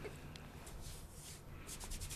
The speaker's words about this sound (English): Just rubbing your arm. No, he's rubbing his pantsuit.